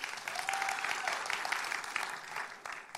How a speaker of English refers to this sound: When I do this, that's your cue to clap. So let's have a practice.